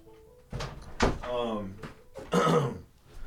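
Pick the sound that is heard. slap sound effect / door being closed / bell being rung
door being closed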